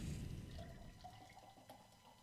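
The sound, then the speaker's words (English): Liquid glugs and splashes steadily for a couple of seconds, a continuous pour with bubbly gurgling, like beer tipped from a can into a glass, no voices; a tart 4% beer poured from a can. “I hate these cans. Pour harder.”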